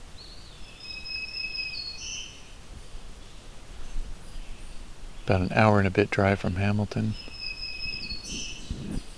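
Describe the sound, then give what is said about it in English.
A black-throated green warbler sings thin, buzzy high phrases in Norfolk County, once at the start and again at the end, with a man talking briefly in between. “But this black-throated green warbler is a pleasant surprise, because we're in Norfolk County.”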